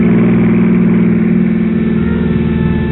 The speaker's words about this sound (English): When the sudden splash of a pair of headlights sweeping my way fast sent me sprawling for cover without so much as a reason why.